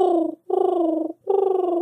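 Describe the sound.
A person imitates a dove cooing by vibrating saliva at the back of the throat: three sustained throaty coos with a slight fluttering trill, separated by brief pauses, with no other sounds or talking.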